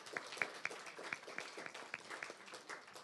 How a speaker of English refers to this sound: First of all, let's have a big round of applause to Roxy's downtown for the venue and the delightful food.